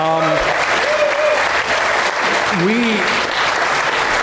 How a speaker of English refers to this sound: That was not your applause line. That was my applause line. But thank you so much.